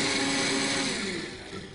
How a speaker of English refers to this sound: All right, so we've got all of our delicious medicine loaded into the blender. Let's go ahead and blend it up for a delicious treat.